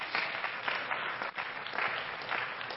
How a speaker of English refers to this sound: Let's give all of our guests a good hand clap.